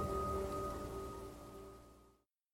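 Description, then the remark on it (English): Steady storm rain hisses against train windows over a low rumble, with faint sustained creaking tones as a train moves slowly along a rusted track; the wash of sound gradually thins before cutting off abruptly, with no voices. “A train creaks across a rusted way, moving slowly along on a stormy day.”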